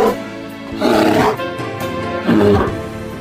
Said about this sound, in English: He got close to penetrating me, and then he let out a howl, and that shook me to my foundations.